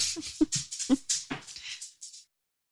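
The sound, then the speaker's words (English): A dog whimpers in a quick run of short, high, breathy whines for about two seconds, wanting to be let out, with no talking, then falls silent. “Do you want to take a pause to let your dog out?”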